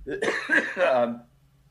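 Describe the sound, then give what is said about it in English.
A person coughs a few times in quick succession, fairly loud, with harsh, throaty bursts that fade into quiet. “It took me an hour and a half to cough.”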